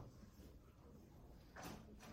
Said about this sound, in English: Can you close the doors, please? Thank you.